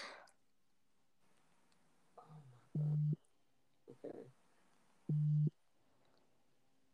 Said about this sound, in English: Is that my phone?